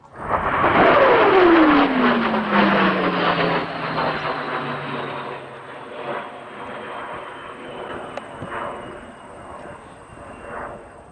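A jet aircraft roars loudly past, its engine pitch sliding steadily downward as it flies off, leaving a fading rumble and faint hiss.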